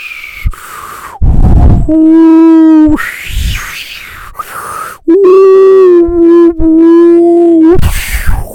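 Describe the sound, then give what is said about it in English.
A voice imitates a howling wind picking up as heavy rain falls in a thunderstorm: two long, loud, moaning hoots that waver in pitch, separated by breathy, whooshing gusts. “And as the heavy rain started to fall, the winds began to howl and pick up.”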